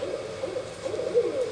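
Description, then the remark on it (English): Four or five barred owls hoot back and forth in low, overlapping calls, steady and moderately loud against a faint background hiss, with no voices. “There's probably four or five that are talking to each other in this recording.”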